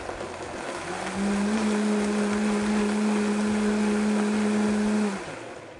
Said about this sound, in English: We'll start low though. You don't wanna be spraying your kitchen, blowing off the lid of your blender.